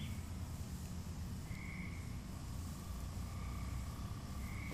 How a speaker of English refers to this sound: That's a cricket. That's a big cricket. Yeah. That's a cricket. We're getting in the cricket season. That's a cricket with a deep voice.